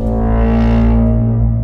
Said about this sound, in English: And there's drum beats and that loud like foghorn. That's not quite a foghorn thing. It just sounds like the bwah.